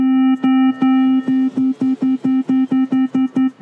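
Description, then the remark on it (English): A steady synthesized tone, a pure sine blended with a buzzier square wave, hums loudly with no voices, broken by rhythmic dropouts and clicks that come faster and faster toward the end. “So you still have the sine wave and the square wave.”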